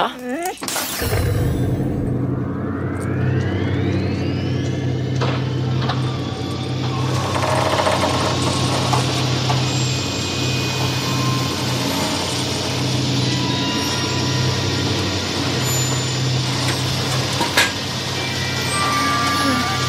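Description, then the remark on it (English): A mechanical whine rises as the rear of a truck opens, then the DeLorean car's engine rumbles steadily and loudly as it rolls out of the truck, with a few clanks and muffled voices underneath; Doc Brown then pops out of the DeLorean. “And then the truck opens, and the DeLorean comes out.”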